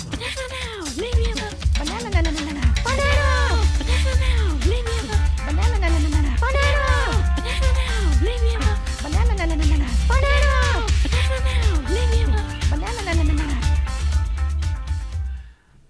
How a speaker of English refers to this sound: Fracking Cat wanted to play this song since we're talking about monkeys.